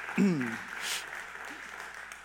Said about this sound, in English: So thank you for the praise team. Give them a clap this morning. That was so good.